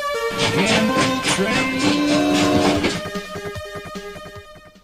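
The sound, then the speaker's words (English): A loud, busy Amiga News show jingle with a 'gamble train' sound effect: sustained whistle-like tones over a dense musical mix, then rhythmic chugging bursts that fade away toward the end. “Why don't you fire up the old gamble train? The gamble train is coming down the pike”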